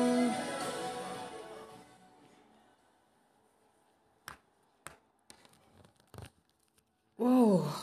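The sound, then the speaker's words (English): A long, drawn-out yawn from a person slowly fades away, followed by a few sharp, scattered snapping clicks, and then a voice starts up at the end. “Man, sorry, I just yawn.”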